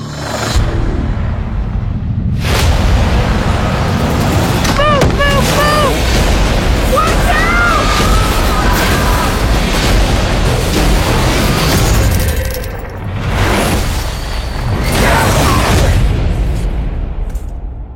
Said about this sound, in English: That lightning, it hit those markers and it took us somewhere.